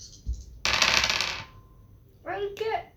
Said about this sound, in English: This is good because I'll be able to stop rolling dice in a second.